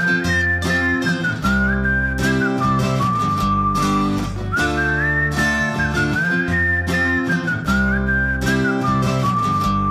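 A person whistles a bright, wavering melody that repeats in two similar phrases, loud and up front over a full band backing of bass and steady drums, with no talking.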